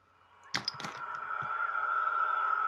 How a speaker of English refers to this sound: Yeah, and these are howler monkeys.